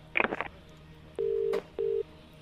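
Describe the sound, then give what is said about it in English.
A quick flurry of telephone dialing tones, then a steady electronic ringback tone sounds twice in a short double pulse, clear over a faint background hum, as the Strawberry Alarm Clock radio show calls a listener live from Harvey Norman. “Okay, it's ringing.”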